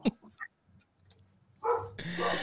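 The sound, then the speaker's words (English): A person imitates a bulldog's bark: a few soft, scattered vocal sounds build into a loud, rough, growling bark at the end. “You got to put them on their game. With a bark.”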